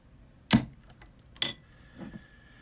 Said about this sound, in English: So this is the swing top bottle, the Grolsch style bottles opening of the OT Mac Goat Face. And I have it near my PC, so I'm really hoping this bottle isn't one of the gushers and it's one of the fine ones. Anyway, here we go. Let's open this bottle.